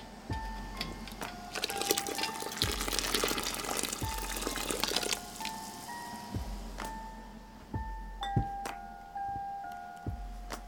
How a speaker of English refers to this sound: So you just grip the jar with the canning jar lifter. Tip the jar over to pour out that hot water and transfer it to your towel on the countertop.